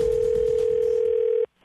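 A phone line rings as a Halloween prank call goes through: one steady electronic ring tone holds for about a second and a half, then cuts off abruptly into near silence.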